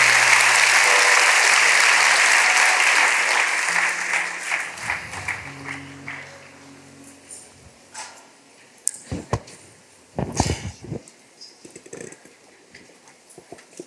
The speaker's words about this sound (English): Come on, put your hands together. Give the Lord a hand clap of praise.